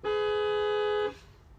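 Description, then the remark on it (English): A single car horn honk from an Audi Q3 plug-in hybrid TFSI-E Sportback sounds as one steady, loud, mid-pitched blast lasting about a second, then cuts off abruptly, leaving only a faint background hum. “And this is what the beep test sounds like.”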